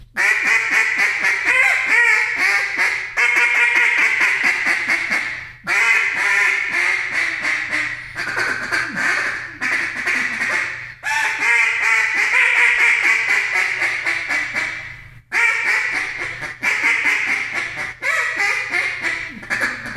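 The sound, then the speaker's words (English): Continuous quacking blown on duck calls, loud, a rapid stream of varied raspy quacks and chatter with only brief pauses, imitating all kinds of different ducks at once. “Just throwing all kinds of different ducks just around, just, you know, doing whatever you got to do.”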